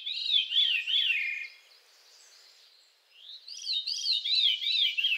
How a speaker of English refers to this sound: 10, 11 years ago now, I was sitting in a cabin with a few of my students. I teach at Bard College, and this bird started singing right outside the open window of this cabin in the woods.